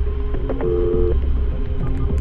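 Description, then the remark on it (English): A few short electronic phone-dialing beeps, one held a bit longer, sound as 911 is called, over a steady low throbbing hum. No one speaks. “And I was shaking, so I immediately grabbed my phone, got out of the car and called 911, and I was totally in shock.”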